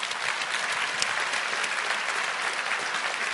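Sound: audience applause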